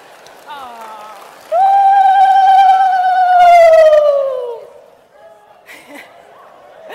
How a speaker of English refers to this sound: All right, so why am I speaking Shona? Why am I ululating on stage in Australia?